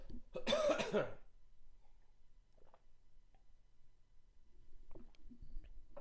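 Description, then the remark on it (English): A harsh throat clearing bursts out at the start, followed by quiet pauses with faint soft clicks and small slurping sips of coffee and water near the end. “I'm going to take a quick second here to just take a sip of my coffee and water and clear my throat, so my apologies.”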